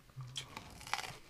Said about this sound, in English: What are you munching over there?